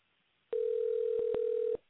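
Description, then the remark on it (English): A steady, loud telephone dial tone hums for just over a second while a call is being placed, a single unbroken electronic pitch with a few faint clicks, no voices present. “let me see if I can get my man on the phone here.”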